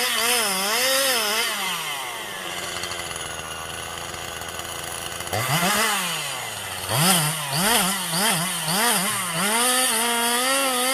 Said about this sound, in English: That chainsaw is fucking nuts, dude. It's just sawing through that shit.